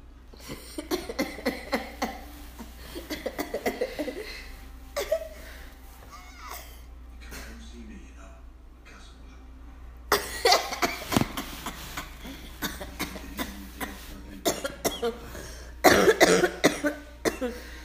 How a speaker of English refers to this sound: Listen, why every podcast you do, you always cough? Every podcast, I swear.